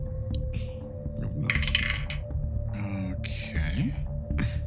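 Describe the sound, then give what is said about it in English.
Dice rattle and clatter across a hard tabletop in several quick bursts during a check in a tabletop game, over a steady low electrical hum, with faint murmuring voices in the background. “Now, are you using the dice that you use on us in battle?”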